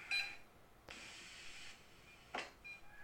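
A single short, high electronic beep sounds near the start, fairly faint, followed by a stretch of soft static-like hiss and a brief breathy burst, with no talking.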